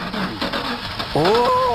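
The engine of a news van with a faulty muffler rumbles roughly, then revs louder with a rising, strained whine partway through.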